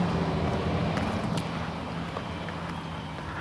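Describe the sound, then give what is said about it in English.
A school bus engine rumbles steadily as it drives past, a low droning hum with broad road noise, even in loudness, with no voices. “Oh, school bus. I thought it sounded like a school bus.”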